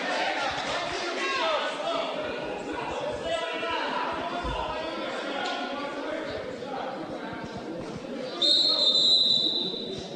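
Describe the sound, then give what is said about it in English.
A single sharp referee's whistle blast, about a second long, rings out near the end during a wrestling match, over a steady murmur of crowd noise and indistinct voices. “Zuber jumps the whistle. That's his second caution.”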